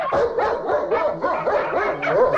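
A dog barks and yips in quick, continuous bursts, loud, with high whiny edges to the calls and no one speaking.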